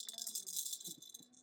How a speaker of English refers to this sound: Oh, yeah, you have your Jet Maraca. Your jet, what did you call it? I love what you called it.